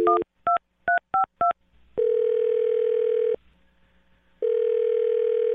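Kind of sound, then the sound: signal or alarm, telephone number being dialed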